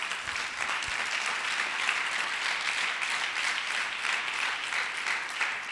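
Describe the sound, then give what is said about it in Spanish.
An audience claps steadily for God for several seconds, a dense, even patter of many hands at a consistent moderate loudness, with no voices standing out. “Denle un aplauso a Dios.”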